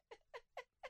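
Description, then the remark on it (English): Four short, sharp coughs in quick, evenly spaced succession, fairly loud, with no talking around them. “Cough again.”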